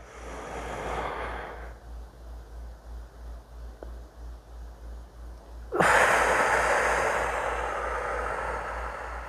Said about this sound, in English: All right, here we go. 4, 7, 8 breaths. Breathing is so good though.